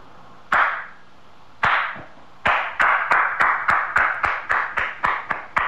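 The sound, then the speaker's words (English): A slow clap: a few sharp, widely spaced handclaps that quickly speed up into steady, brisker applause-like clapping, each clap crisp and loud with no voices. “The movie Lucas was filmed in Glen Ellen, which captured on film the world's first slow clap.”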